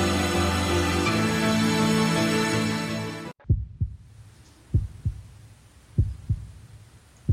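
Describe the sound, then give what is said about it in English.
A few seconds of music cut off abruptly, followed by a heartbeat alone: deep, muffled lub-dub thumps in pairs, repeating at a steady, slow pulse. “The heartbeat reminds me there are even medical thermal imaging uses now.”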